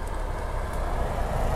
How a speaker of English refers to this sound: Car! Now there's a car coming.